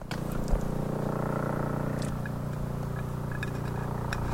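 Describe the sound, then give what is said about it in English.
A helicopter circling overhead at night, passing about every 30 seconds, drones steadily with a low throbbing rumble and a fast, even chop that holds at a constant level throughout, with a few faint ticks and clicks scattered above it. “Well, there's the helicopter.”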